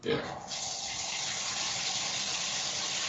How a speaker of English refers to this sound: Oh, what's that? Oh, there's some water running in the background. Sorry. No, it's all right. Well, it sounds like a waterfall.